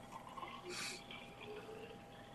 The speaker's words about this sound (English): Just hear the water filling up in the background. I know. And that's kind of satisfying to me. It was a really nice noise. It was clean, right?